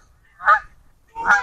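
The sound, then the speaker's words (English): Two loud, brassy goose honks about a second apart, each a short harsh blast standing out clearly against a quiet low background rumble, as a little dog chases the geese. “Dog's chasing the geese.”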